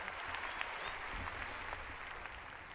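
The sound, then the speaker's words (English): A steady wash of audience applause welcoming guest Andy Roddick, many hands clapping at once in a dense, even roar that holds at a constant loudness throughout, with no voices standing out. “Was that a tennis crowd?”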